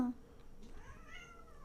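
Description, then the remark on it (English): A single drawn-out cat meow, fairly faint, rising then bending down in pitch over a low, steady background hum. “That may have actually picked up this time, the cat.”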